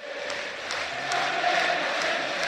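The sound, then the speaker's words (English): A packed football stadium crowd at Ibrox in Govan roars in a steady, dense wall of noise as the teams come out for a match 90 minutes from a Europa League final, with bursts of cheering and chanting rising and falling throughout. “The atmosphere is absolutely rocking here in Govan.”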